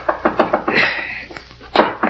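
A quick run of four firm knocks on the door of room 500, followed by a brief hissing rustle, then two more heavy knocks after a short pause. No voices.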